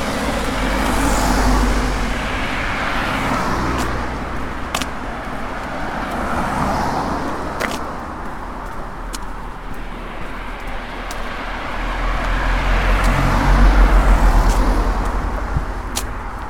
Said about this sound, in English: Across the River Yar, and I'm now on the busy coast road. Which I'm about to leave, heading for Fort Victoria.